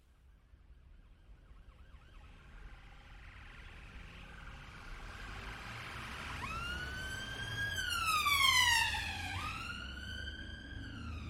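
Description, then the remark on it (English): An ambulance siren wails in over low traffic rumble, its rising and falling tone swelling louder as it draws near, peaking briefly before dipping slightly as it continues. “Then the same ambulance visited number 33 a couple of days later.”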